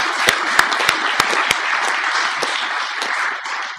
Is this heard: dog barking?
no